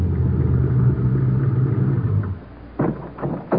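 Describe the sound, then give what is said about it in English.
A car engine rumbles steadily as the car pulls through a gate and heads toward a hangar, then drops off as the vehicle comes to a stop at one end of the hangar, followed by a few short mechanical bursts and clunks. “The car pulls through the gate and heads toward the hangar.”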